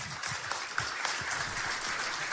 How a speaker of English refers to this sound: I just want to stop and say, he asked, would you take these steps? Donald Trump says, yes, I would. And everyone starts clapping.